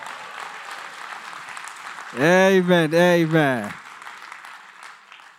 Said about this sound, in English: So can we clap hands for the first preacher, which is God? Can we clap hands for the first one?